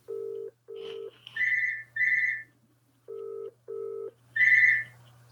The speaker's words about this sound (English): It will stop ringing in a sec. This is the voicemail for …'s office number